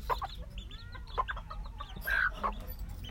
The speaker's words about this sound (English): Such good mamas, these little Sarama hens.